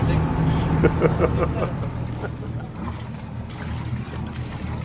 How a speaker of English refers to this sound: The ferry is pulling into the small quay at Inchigill. Whoa! As well as passengers, the boat brings 2 folding tables.